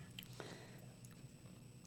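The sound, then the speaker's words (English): Close-up munching of popcorn, a soft run of irregular crunches and wet chewing clicks against a low background hum, with no talking. “And I'm eating popcorn. I just hear popcorn in my sorry. Headphones.”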